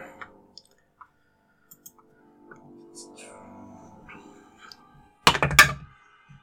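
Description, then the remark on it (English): A few light taps and clicks, then a loud clatter of dice tumbling across a table near the end, landing on a 4 and a 3, with a faint murmur of voices in the background. “That was a 4 and a 3 on those dice.”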